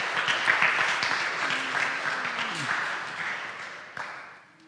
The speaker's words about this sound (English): So if you two guys would come up here and help me preach real quick, just give them a hand as they're coming because it's really difficult to get in front of people. So clap for them.